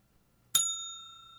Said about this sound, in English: Oh, it's a desk bell. A desk bell. Hey, desk bell. You got our attention.